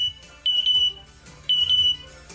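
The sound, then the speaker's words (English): A pet African grey parrot named Jazz mimics a smoke detector, giving repeated shrill, steady beeps at a high pitch, about three per burst in two bursts close together. Loud, with a faint background murmur. “That's his smoke detector impression. He copied the sound of a smoke detector.”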